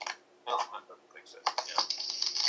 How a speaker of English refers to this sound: Like, it's just sort of like static. I don't know what it is. It sounds like typing on my end.